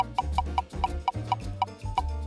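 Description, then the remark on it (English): A spinning prize wheel ticks steadily, with sharp clicks about four or five per second, loud, over a low humming background tone with no voices. “The wheel's ticking.”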